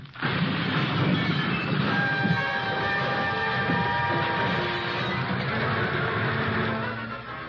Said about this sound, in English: Lie there in the brush just as the car bounces down to the bottom and bursts into flames.